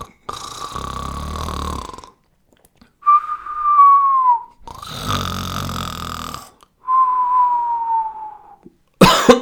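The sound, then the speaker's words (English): A person imitates snoring: two long rasping inhales, each followed by a whistling exhale, then an abrupt cough bursts out at the very end. “Oh, pretending to snore makes you cough.”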